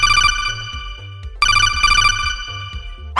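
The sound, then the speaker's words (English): A loud, melodic phone ringtone for an incoming call plays alone, a bright chiming tune over a bouncy bass line that cycles through its phrase twice in quick succession. “You want to do another phone call? Yeah, why not?”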